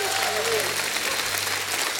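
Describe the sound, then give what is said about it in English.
An audience claps steadily in dense, continuous applause as praise to God, with raised voices shouting and calling out over the clapping throughout. “Someone give Him a hand clap and a shout of praise.”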